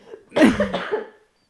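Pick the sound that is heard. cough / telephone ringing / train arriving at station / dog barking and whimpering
cough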